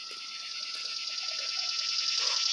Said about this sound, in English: damn cicadas